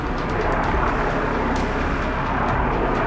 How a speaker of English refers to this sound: And that's exactly what he did, as a military helicopter hovered overhead.